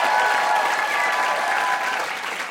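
Steady, dense applause from a sizable studio audience of an NPR trivia show, applauding a contestant after a game, loud and sustained throughout, a wash of many hands clapping at once with no voices standing out, fading slightly toward the end.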